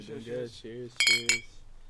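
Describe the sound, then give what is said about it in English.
Two bright, ringing glass clinks close together, as in a toast in a backyard, following a moment of low voices. The chimes are clear, with a short shimmering ring after each. “Cheers.”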